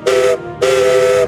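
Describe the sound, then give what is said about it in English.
Two loud steam whistle blasts from a small green narrow-gauge engine that works at a quarry, a short toot followed by a longer one, each with a bright tone over a rushing hiss of steam. “But he works hard at the quarry and has a whistle that sounds like this.”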